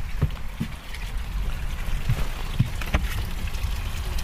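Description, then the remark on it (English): A steady wash of trickling water from the fountain of a garden pond outside runs throughout, with a few soft splashy ticks breaking through at irregular moments. No voices, just the continuous, fairly quiet flow. “I'm going to turn the fountain of the pond outside off. I can hear that trickling.”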